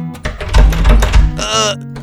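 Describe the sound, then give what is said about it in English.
Several heavy thuds and rattling bumps as someone shoves against the locked door of the Beach Bear Lodge, followed by a short strained vocal grunt. “Yeah, the door is broke. It won't open, dude.”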